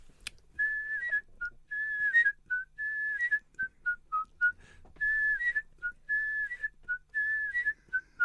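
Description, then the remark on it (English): A single person whistles the theme tune of the TV programme the Live Birds, a bright, lilting melody of short and sustained notes, phrased in repeating bursts with brief pauses, clear with no talking underneath. “That's the whistle.”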